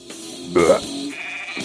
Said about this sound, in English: Oh, gargle solo. Yep. The old gargle solo.